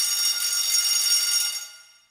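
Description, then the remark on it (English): A bell rings in one continuous, bright, metallic clatter, holding steady and fairly loud for about a second and a half before fading away. No one speaks. “And there's the bell.”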